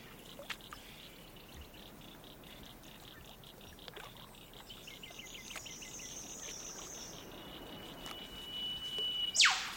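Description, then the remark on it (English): A steady chorus of chirping insects and soft hissing of shrimp fills an open outdoor space by a lake in New South Wales, Australia; a drawn-out whistle drifts through the middle, and a sharp, loud bird call, echoed by large structures in the surroundings, bursts out near the end as a bird flies through. “You first hear the scale when a bird flies through and its call is echoed by large structures in the environment.”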